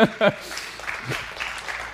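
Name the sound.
audience clapping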